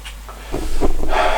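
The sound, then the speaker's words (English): A short, rough throat clearing: a few raspy guttural bursts in quick succession, followed by a breathy hiss, with no talking. “See, I did all the sound set up, I did all the sound checks, I did all the positioning, and then I end up with a frog in my throat.”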